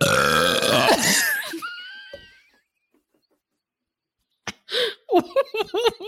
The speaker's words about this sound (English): Whoa! Yikes! That was an assault on my ears. I've never heard you burp like that before. Hey, it's been a while since I've had the old seltz.